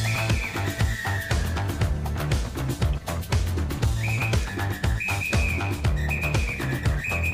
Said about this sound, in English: Oh, aggressive whistle.